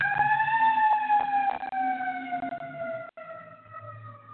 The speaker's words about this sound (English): All right, we got to let the fire engine pass by.